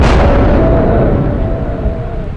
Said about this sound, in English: I barely had time to shelter behind a thick copse of trees as the whole mountainside trembled. A rumble like the worst storm ever shook me to my bones as an avalanche thundered downslope.